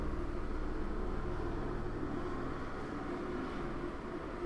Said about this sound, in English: Running errands and commuting, those together, hold on, helicopters, just joyriding, you know?